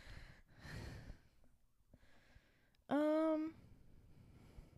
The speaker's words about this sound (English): It just sounded like Michael Myers breathing into the microphone. Sorry. We got new microphones, so they're...